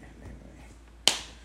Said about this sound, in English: If you hear any random claps, that's just if we cut things out or not. I'm not sure if we'll. Yeah, we'll definitely cut out the previous claps.